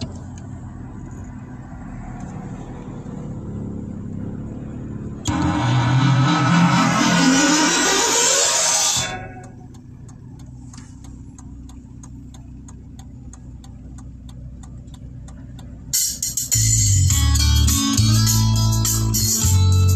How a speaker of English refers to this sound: All right, Satanic Matrix Awareness. We're about to freestyle over this beat.